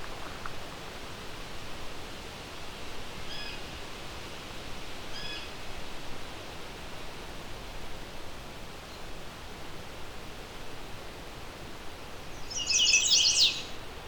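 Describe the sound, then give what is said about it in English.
A chestnut-sided warbler in leafed-out trees sings a quick, high-pitched, abbreviated 'pleased to meet ya' phrase, a rapid run of notes ending in a clipped flourish, bursting out near the end over a steady background hiss, with a couple of faint chips earlier. “It's a very fast, please, please, please to meet ya. It's a fairly abbreviated version.”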